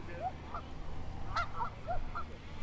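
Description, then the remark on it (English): Geese on the water honk repeatedly in short, scattered calls as boats herd them toward a corral, over a steady outdoor background rumble, several birds overlapping with no one speaking. “Watching all these boats herd these geese in here like sheep.”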